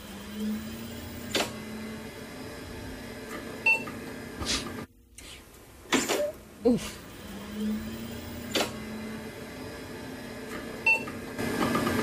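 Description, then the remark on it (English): A dial-up modem connecting: a steady low hum with chirpy electronic beeps and tones, harsh bursts of static-like screeching, and a brief dropout midway, followed by more warbling noise. “If it wasn't your computer giving you up, it was the modem giving you up.”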